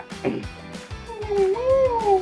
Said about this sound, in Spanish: Este no es mío, este es de la vecina. Yo no sé qué hace este gato aquí, pero como nosotros le damos más comida que mi vecina, entonces se queda aquí.